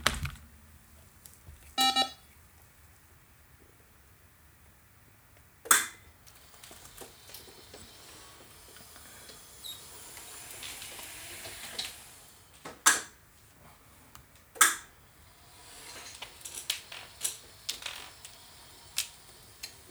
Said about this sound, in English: Oh man, I left my phone over there. Give me 2 seconds, guys. You're going to hear my chair and everything. And I'm going to leave it in just so you can hear it, so you see I won't lie. Hold on.